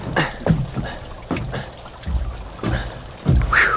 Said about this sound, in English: Rockville's main road had been turned into a sea of mud that sucked and pulled at Tom Randall's feet as he made his way to the porch of the stage line's office.